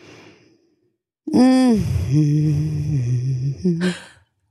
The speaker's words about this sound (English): She's humming, guys. That means. Guys, that's a real way to just handle it, isn't it? Vocal stimming. It is vocal stimming, exactly.